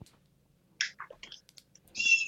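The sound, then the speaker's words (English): Several birds outside let out a burst of shrill, high-pitched chirps and squawks, chattering calls overlapping in quick, uneven bursts, ending in a loud sustained screech. “No, I'm coming back inside because some birds going nuts out there.”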